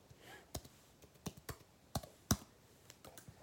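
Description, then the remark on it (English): Keys clacking on a computer keyboard in an irregular run of about eight sharp, distinct taps, fairly quiet, with no voices. “Can you guys hear this? Hear this? Typing.”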